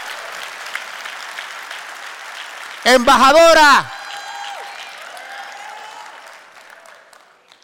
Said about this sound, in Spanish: ¡Oh, date un aplauso, embajador!